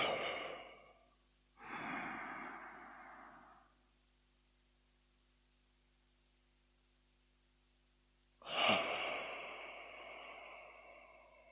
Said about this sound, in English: That's the usual position for it. And who knows why that is, but it's an ancient breathing technique. So again, breathing into a count of four, first.